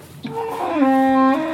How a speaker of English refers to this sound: Who's that making all that fuss? Betsy? Whoa. Yes, Betsy. The cow with the one blue eye. Settle down.